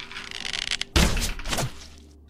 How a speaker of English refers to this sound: Okay, so now we'll be rolling damage dice for you. Let's see here. The first arrow.